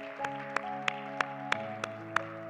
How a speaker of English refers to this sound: One more time. Put your hands together. Give Jesus a hand clap of praise.